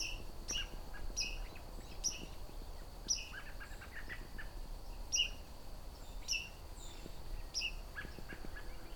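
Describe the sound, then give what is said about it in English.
Sharp, high metallic "pink" call notes of a white-throated sparrow repeat irregularly, about a dozen times, clear over a steady low outdoor background hum, with no talking. “Pink kind of call, or peep, however you want to pronounce it.”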